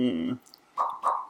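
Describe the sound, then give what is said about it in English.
A short voiced hum, then two soft popping sounds made with the mouth, imitating bubbles bursting, a brief gap between each pop. “It's bubbles bursting.”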